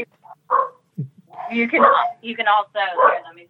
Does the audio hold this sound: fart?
no